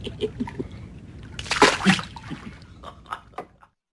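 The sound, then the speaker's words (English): Water splashes and sloshes as a person immerses themselves in it, building to a bigger, louder splash midway as the body moves through it, then settling into smaller lapping splashes and drips before going quiet. “And to immerse myself in water, oh, do you know what joy this is?”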